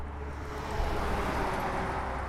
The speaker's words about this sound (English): Near that, cars zoom by on the highway. It's much busier than when he first started farming in the 1950s.